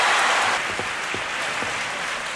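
Steady applause from a large Academy Awards audience as an award winner is announced, dense clapping sustained evenly throughout with no voices standing out.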